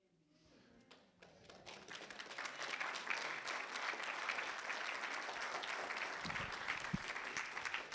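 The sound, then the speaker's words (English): Audience clapping swells from a few scattered claps into steady, dense applause that holds at full volume, with a couple of low thumps near the end. “You're clapping.”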